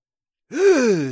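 A single voiced gasp, performed by a person imitating the sound, rising then sliding down in pitch. It is fairly loud, following a brief silence, with no other sounds.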